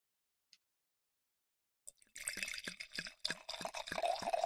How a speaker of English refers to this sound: Okay, I'm pouring.